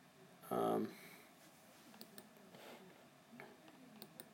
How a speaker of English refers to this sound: Again, sorry for the clicking.